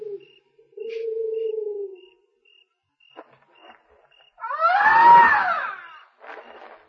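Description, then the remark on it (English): A man's voice mimics a woman's cry: one loud, wavering wail that rises and falls, preceded by a low drawn-out hum, scattered faint clicks and a steady faint chirping in the background. “That ain't what you think. It ain't no woman, that's an Indian.”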